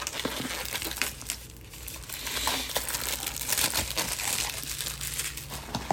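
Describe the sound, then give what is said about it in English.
Plastic wrapping is pulled off a Chromecast box, a dense, continuous crinkling and crackling with sharp snaps scattered throughout, steady and fairly loud for the whole stretch, no voices. “And while I'm trying to get the plastic off, everybody, I would just like to let it known that I don't like UPS.”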